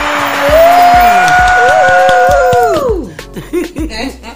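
A loud burst of crowd cheering fills the first three seconds, with drawn-out whooping tones that slide downward as it fades, followed by a few seconds of people talking.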